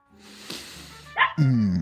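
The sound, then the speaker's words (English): A puppy lets out a short, high yip and then a longer, falling bark-like whine, fairly loud, over a faint background hiss. “Hello, puppy.”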